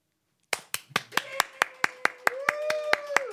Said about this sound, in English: As you can tell, not even anyone that works on the show is excited about it because that was the most delayed, insincere, give-a-fuck clap I've ever heard in my life.